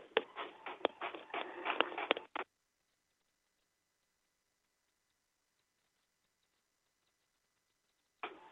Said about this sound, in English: Oh, my goodness, now my printer's kicking in. Hold on a second. I don't want you guys to hear all that.